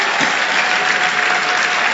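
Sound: audience clapping hands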